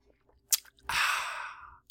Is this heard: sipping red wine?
yes